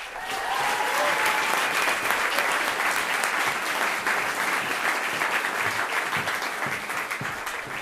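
A crowd applauds steadily, a dense wash of clapping that holds at an even, fairly loud level for several seconds with no one speaking over it.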